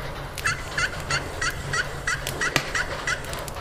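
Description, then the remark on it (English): A steady series of about ten turkey hen yelps, evenly spaced, repeating rhythmically over a low background hum with no talking. “Can you do a hen yelp?”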